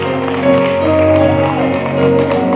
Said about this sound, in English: Can y'all clap for them? No, y'all don't clap. Can y'all clap for them? Amen.